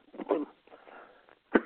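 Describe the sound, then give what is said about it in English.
A person coughs in short, harsh bursts: a close pair at first, then a raspy breath, then one sharp, loud cough at the end. Nobody speaks, and it sounds like a phone line. “You caught me one of my coughing spells.”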